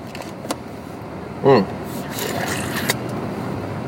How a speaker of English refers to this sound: Yeah, this traffic's pretty gnarly.